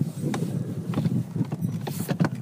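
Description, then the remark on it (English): A one-horse open sleigh moves through snowy fields in Norway at Christmas, hooves clopping in a steady, uneven rhythm with light jingling harness bells over a soft rushing background, with no voices. “You hear the horse bells.”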